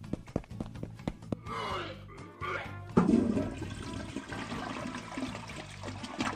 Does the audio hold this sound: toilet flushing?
yes